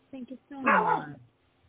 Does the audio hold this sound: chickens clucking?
no